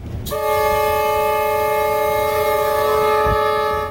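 A train horn sounds one long, loud, unbroken blast at a rail crossing in Victoria, Australia, from a train travelling around 40 kilometres an hour as a ute crosses; its steady multi-tone chord holds for several seconds, with a low rumble underneath and no voices.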